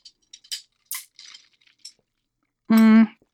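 Several light, bright clinks of glasses of Bloody Caesar tapping together in a toast in a basement, scattered over a couple of seconds, followed by a short, loud sustained voiced tone.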